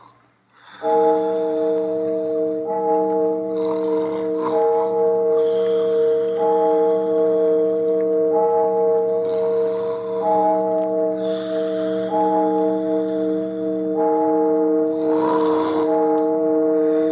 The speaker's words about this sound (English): But rain or no rain, we just waited and waited until the church clock struck 12.